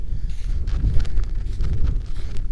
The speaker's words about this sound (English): Sorry, it's so windy. Let me pause this for a sec.